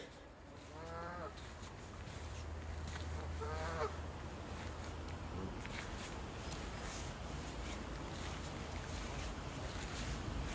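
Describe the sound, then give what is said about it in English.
Two loud, nasal honks ring out early on, a goose calling as it attacks a person, over a steady low rumble and outdoor background noise, followed by a long stretch of the same droning ambience with no voices. “Can we include the sound of me getting attacked by a goose?”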